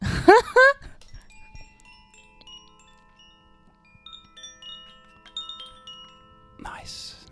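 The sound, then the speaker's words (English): A brief burst of rising tones opens, then a soft cluster of chimes rings out, several bell-like notes overlapping and sustaining quietly for seconds before a short noisy burst at the end. “I'll just bring the chimes in again.”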